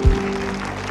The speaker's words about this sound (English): I'm telling you, come on, somebody out there. You can give the Lord a hand clap.